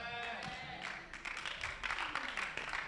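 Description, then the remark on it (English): Thin, half-hearted clapping from a church audience after a sermon: a scattered patter of hands, uneven and subdued, growing slightly denser toward the end, with a brief tonal voice-like sound at the start. “Oh, you are even lazy about clapping.”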